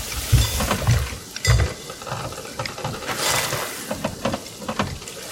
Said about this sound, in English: You know, it's really weird. I'm scooping up a lot of water, but... It's raining.